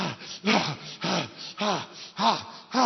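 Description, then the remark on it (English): A voice imitates heavy panting: six loud, rapid breathy gasps in a steady rhythm, each with a rising-falling voiced edge, with no other talk. “When you pray for 30 minutes, it's like you have run for 16 hours. You are panting.”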